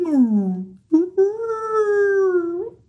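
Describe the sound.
A person vocally mimics a high-pitched whale call: a descending moan, a brief break, then a long sustained tonal wail with rich harmonics, fairly loud, with no other sounds.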